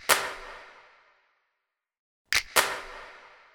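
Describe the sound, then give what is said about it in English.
Sharp percussive finger snaps and hand claps added as extra percussion to a song's drum-loop beat: one crisp hit with a short ringing tail, a pause, then two quick hits in a row. No voices. “First, there's snaps and claps.”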